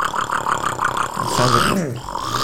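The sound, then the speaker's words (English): A person vocally imitates a five-cylinder diesel engine, making a rapid, lumpy loop of throaty chugging pulses that swells into a brief rising and falling voiced rumble before the chugging resumes. “The five cylinder is more of a loop.”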